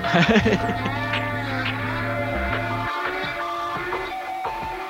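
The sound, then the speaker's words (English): Whale-like moaning calls drift through a piece of music: long, wavering tones layered over a sustained low drone that drops out partway, leaving the higher eerie cries against a busy backing. “Of course, I'm cranking it during whale noises, apparently.”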